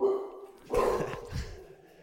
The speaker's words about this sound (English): Jack's dog. Sorry.